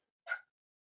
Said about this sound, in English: Dog just came into the room, just barking.